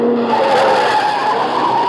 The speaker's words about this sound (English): Car coming down from the house. Yeah, at a good clip, too. Well, looks like Henri's car, a little souped-up job.